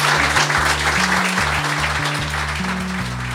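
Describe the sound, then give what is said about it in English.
Steady audience applause for David Crane at the end of the show, a dense wash of clapping that holds at an even level throughout, with low bass notes of music stepping underneath. No one speaks. “Ladies and gentlemen, please give a big round of applause for David Crane.”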